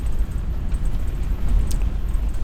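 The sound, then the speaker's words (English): A steady, heavy low rumble of a vehicle engine cruising down a gravel road runs throughout, with gritty crackling of rocks under the tires layered on top, and no voices. “But as I am cruising down this road, you can hear the rumble of the engine and you can hear the rocks and stuff underneath these tires.”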